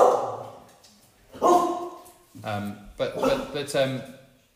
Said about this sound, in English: Sorry, guys, about my dog's barking, I apologise.